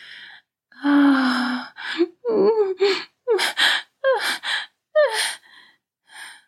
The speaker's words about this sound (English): As his mouth met her clit, she let out a loud gasp.